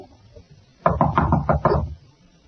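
knocking on a door

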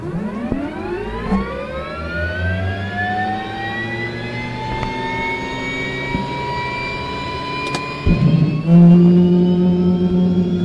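helicopter flying

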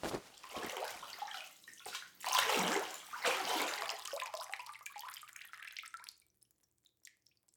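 water dripping

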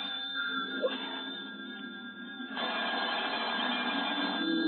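telephone ringing

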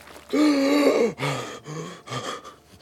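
man gasping

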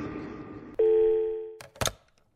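cell phone ringing

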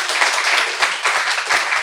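audience applause

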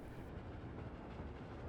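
train moving along rails

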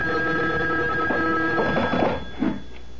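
telephone ringing

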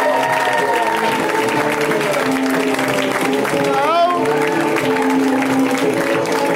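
applause

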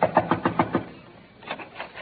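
knocking on a door

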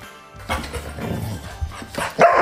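dog barking

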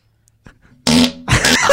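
fart

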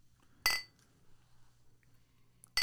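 beer glasses clinking

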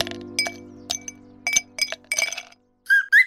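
ice cubes clinking

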